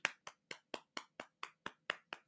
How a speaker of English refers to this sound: pause for applause for how great my Instagram thumbnail was